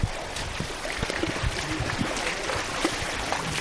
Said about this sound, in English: About 500 yards upstream from the first stop, we round a bend to the sound of rushing water. A mini waterfall gushes over a flat stretch of sand and mud.